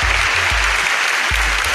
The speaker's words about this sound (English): let me give you, as I always like to give you your applause.